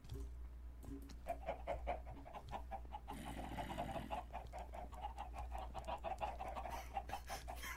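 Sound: video game chickens clucking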